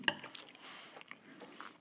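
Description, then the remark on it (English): Quiet eating: a single bright clink of a spoon against a dish, then soft, irregular chewing and mouth noises for a couple of seconds as someone eats Christmas pudding topped with gold leaf, with no talking. “Again, guys, sorry you have to hear my munching voices.”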